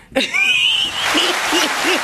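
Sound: clapping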